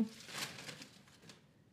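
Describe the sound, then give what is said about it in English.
A quick, papery riffle of a deck of cards being shuffled, a soft fluttering burst lasting about a second and a half before it trails off, fairly quiet. “I am the better shuffler.”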